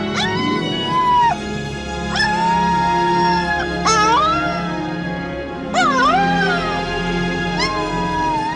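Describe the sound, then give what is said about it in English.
A young wolf pup howls in sadness at the end of an emotional death scene, in a series of about five high, drawn-out wails, each sliding up and falling away, fairly loud over a low, steady background hum. “And you get this very emotional death scene, and then the pup howls in sadness at the end.”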